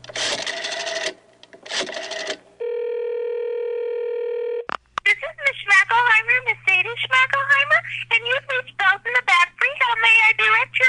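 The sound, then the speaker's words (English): Someone calls on a cell phone: a couple of short electronic bursts like keypad beeps, followed by a steady two-second phone tone, then rapid high-pitched garbled chatter, like a sped-up voice on the line. “I'll use my cell phone and call”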